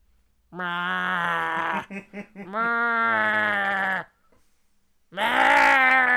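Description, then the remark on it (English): A human voice imitates the 4 a.m. yowl of Ziggy, a black cat wanting to be fed, which sounded like a hoarse, lowing cow with a sore throat: three loud, drawn-out, gravelly moans with a brief stuttering break between the first two, a pause, then a final cry. “But he didn't sound like a fucking cat. He sounded like a cow. It was like a cow with a sore throat.”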